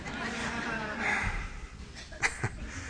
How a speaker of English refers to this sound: Heavenly Father, Lord God, I wish, Lord, you would take this cough away.